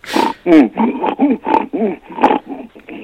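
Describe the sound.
A man's voice imitates a pig with a grunting, snorting laugh for a villain character: a run of about seven or eight rough, rhythmic bursts, loud, with no words spoken.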